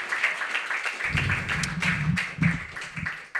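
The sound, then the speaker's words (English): Steady, dense applause from an audience for a reader performing for the first time, many hands clapping at once in a continuous crackling wash, with a low murmur of the crowd joining in partway through. “Give her one more round of applause for doing this for the first time.”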